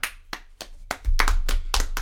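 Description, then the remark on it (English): A run of about ten sharp hand claps, spaced unevenly and getting a little quicker toward the end, with a low rumble underneath the later claps. No one speaks. “Round of applause.”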